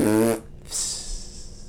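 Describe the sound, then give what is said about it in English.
A short, loud, buzzy fart sound breaks off abruptly; after a brief pause a soft, airy hiss trails off like a fizzle. No talking. “I was gonna do a fizzle out joke, but fart works too.”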